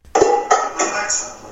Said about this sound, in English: What was that? So that sounded like probably me putting pots and pans away or like emptying the dishwasher.